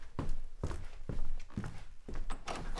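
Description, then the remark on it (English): Steady footsteps, about six even strides walking at a moderate pace to answer someone at the door, with a dull thunk of the door being opened. No one speaks. “Hang on, I think someone's at the door now.”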